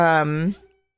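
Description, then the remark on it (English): A single loud, drawn-out cat meow lasting about half a second, clear, bending slightly in pitch before trailing off into silence, with no talking. “The loudest meow?”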